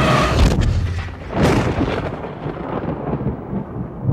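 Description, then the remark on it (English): Deep, rumbling thunder rolls through the whole stretch, with a loud crack near the start followed by a sustained, heavy low boom that slowly fades. No one speaks. “finally lands back down again, lid closed, punctuated by booming thunder.”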